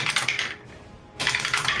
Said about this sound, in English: You want to hear these dice again, DM? Oh, yeah. Get the mic right up on this dude.